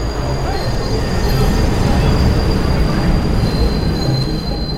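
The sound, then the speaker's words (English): A Metro-North commuter train running from Bedford Hills to Grand Central Station rolls steadily along the rails with a loud, constant rumble, thin metallic wheel squeal ringing high above the roar throughout, continuous. “And they put me on the Metro North train from Bedford Hills to Grand Central Station.”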